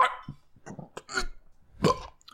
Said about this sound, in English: Oh, I got a burp coming.